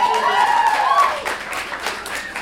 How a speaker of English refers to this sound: I think that was a bigger round of applause than I got. Not that it's a contest.